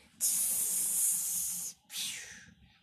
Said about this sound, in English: Fire extinguisher coming through.